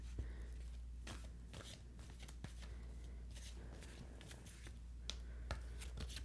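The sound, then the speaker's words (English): A deck of tarot cards being shuffled, a series of quick papery riffles and snaps repeating irregularly over a steady low hum, with no one speaking. “And this might sound silly, but, like, even just the sound of the shuffling.”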